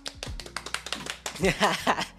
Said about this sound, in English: Everybody clap.